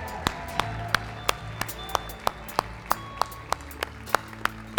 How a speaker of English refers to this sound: Will we give her a round of applause right now?